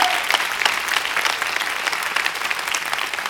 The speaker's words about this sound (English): Can you give the Lord a big hand clap? Come on, praise God. You give the Lord a big hand clap.